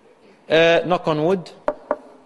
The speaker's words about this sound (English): Knock on wood. We know about that one. People do it. Even atheists who don't even believe in a God or anything, knock on wood.